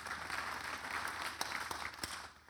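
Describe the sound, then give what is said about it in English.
A crowd applauds steadily, many hands clapping in a dense, continuous patter with a few sharper claps standing out, in response to figures on churches formed in the U.S., Mexico and Kenya. “Yeah, you guys can clap. That's worth clapping for, right?”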